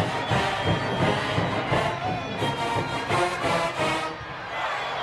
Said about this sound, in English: Man, that's some noise going on at that game, isn't it? That's the way it ought to be.